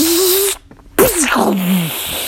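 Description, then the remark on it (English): A voice imitates crackling lightning: a hissing, static-like rush over a low hum, a brief break, then a louder sizzling burst with wavering voiced tones that slowly fades out. “And Froggy was getting so powerful that he pulled lightning down into his hands.”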